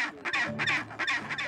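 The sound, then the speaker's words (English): A chinstrap penguin colony in Antarctica calling on a cold, windy, rainy day, with harsh, braying squawks in rapid overlapping bursts that rise and fall several times, loud and raucous with no talking. “we visited a chinstrap penguin colony.”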